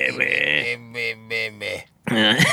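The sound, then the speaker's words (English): A person imitates a frog with a low, croaky, belch-like voice: a drawn-out opening croak, then three rhythmic pulsing ribbits over a steady low drone, a brief pause, and one more loud croak. “and frogs are like...”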